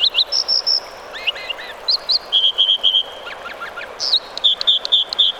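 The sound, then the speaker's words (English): An American dipper gives a rapid series of high, buzzy, repeated whistles and trills, clear over the steady wash of a rushing mountain stream in the American West. “An American dipper calls across a rushing mountain stream.”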